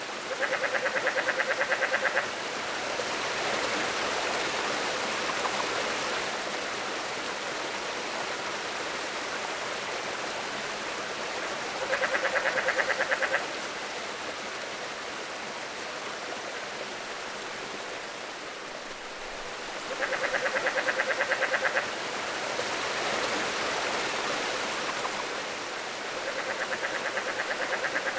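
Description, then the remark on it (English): Faint chuckling of rare relict leopard frogs comes in short, repeated bursts every several seconds, set against the steady rush of flowing water. No one speaks. “if you listen carefully, you might hear the faint chuckling of the relict leopard frog.”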